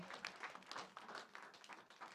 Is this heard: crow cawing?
no